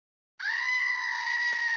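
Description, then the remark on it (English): A single loud, sustained goat bleat sound effect that starts abruptly and holds a strained, scream-like tone for over a second, alone with no talking. “Where's the goat when you need it?”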